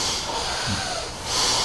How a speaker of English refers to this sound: Here and now, look deep inside the chest and start breathing long and the fast breath into the chest. Long and the fast breath into the chest.